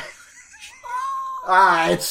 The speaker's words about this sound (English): He's just meowing.